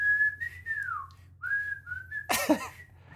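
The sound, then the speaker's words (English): A person whistles a song's short whistled intro melody, started too high, the pitch wavering, sliding and faltering before breaking off, followed by a breathy burst of air. “I started way too high. My whistling stopped.”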